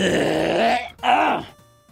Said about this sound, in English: I needed to clear my throat.